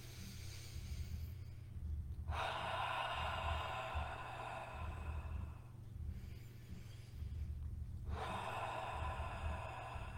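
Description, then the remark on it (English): Two long, forceful breaths pushed out through an open mouth during a deep-breathing exercise, each a broad rushing hiss lasting several seconds, loud, separated by a quieter inhale, over a steady low hum. “Breathing out your own fire.”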